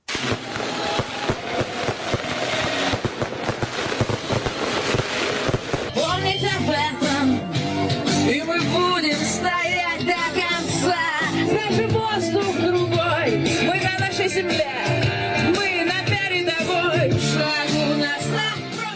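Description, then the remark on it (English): Dense crackling and popping fireworks burst continuously outdoors at a street celebration in Donetsk marking Russia's recognition of the republic, loud, while a crowd cheers and sings underneath, the voices growing more prominent as the bangs continue. “And that was the sound of fireworks.”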